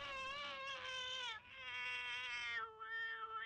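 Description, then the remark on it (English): Blofeld's cat lets out a long, wailing scream that rises and wavers like a crying baby, sustained, with a brief break before the yowling continues, as Blofeld falls into a pool of boiling mud. “And then his cat screams. Yes, like it sounded like a baby.”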